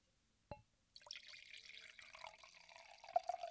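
A single sharp clink, then wine pours steadily into a glass with a continuous splashing gurgle and a faint ringing tone, rising slightly as the glass fills, with no talking.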